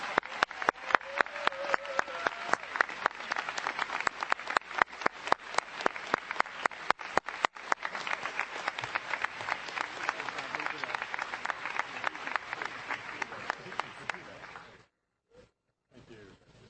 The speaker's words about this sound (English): And please join me in giving all of our honorary members one last round of applause.